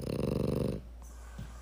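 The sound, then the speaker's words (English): Two dogs snoring: a loud, rattling, buzzy snore lasting under a second, followed by quiet breathing and a faint soft snort. “Now two dogs are snoring.”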